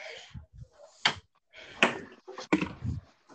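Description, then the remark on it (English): A door is handled as someone comes to it: a few soft low thumps, then several sharp clunks and knocks spaced about a second apart as it opens and shuts, with faint rustling between. “There's someone at my door.”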